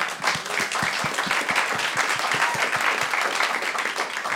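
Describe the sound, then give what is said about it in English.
A room full of people applauding steadily, dense overlapping claps sustained at an even, fairly loud level throughout, with no one speaking over it. “I'm sorry, I could your plug, Zaya, could have ended with applause, and I stepped on it”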